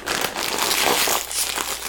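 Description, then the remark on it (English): A crinkly bag of kettle chips is pulled open, giving a steady, loud rustling and crackling of foil-lined plastic that lasts about two seconds with no voices over it. “Regular Lay's chips, when you open up the bag, it smells like a fart.”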